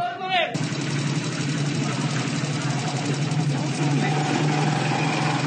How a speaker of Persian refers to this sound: ماشینا آتش نشانی برای خاموش کردن موشک ناموفق سپاه پاسداران داخل پتروشیمی چابهار.